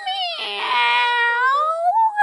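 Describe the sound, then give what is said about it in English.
A group of people pretending to be cats loudly imitates a cat's meow together, as loud as they can, one long drawn-out wail that rises and then slides down in pitch, sustained for about two seconds. “One, two, three. Meow.”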